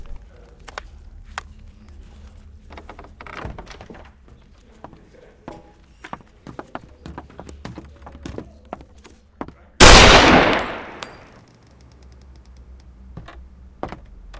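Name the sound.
gunshots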